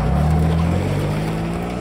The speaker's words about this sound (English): I ran to Jerry's car. I floored it back to Gloucester